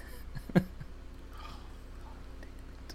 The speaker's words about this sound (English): All right, now let's roll some bad dice.